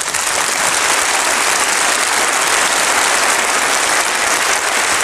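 A crowd applauds steadily for about five seconds, a dense, even wash of many hands clapping at a consistent loud level with no voices standing out.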